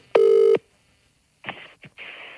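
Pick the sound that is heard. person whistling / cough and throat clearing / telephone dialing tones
telephone dialing tones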